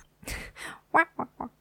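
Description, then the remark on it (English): A person imitates a loud duck: two breathy, raspy honks followed by three short, sharp nasal quacks in quick succession, with no other sounds. “He sends out the special loud as hell quack”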